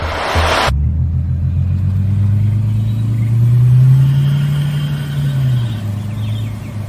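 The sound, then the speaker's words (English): A brief burst of noise, then the engine of a Bentley Continental convertible rumbles loudly in a short promotional video, its deep tone climbing in a steady rev before settling back to a throaty idle. No one speaks. “show you this very, very short video about the vehicle that we're giving away exclusively on Forbidden Knowledge TV”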